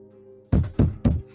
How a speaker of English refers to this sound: I walk towards the building in that case. You give a knock. Can we make it? I ask Berengar to knock. Berengar, you got a knock? Yes.